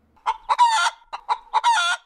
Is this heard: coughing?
no